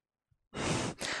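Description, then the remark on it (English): Heavy breathing: a long, loud, airy exhale like a sigh, then a brief pause and another rushing breath. No one speaks. “He's breathing heavy.”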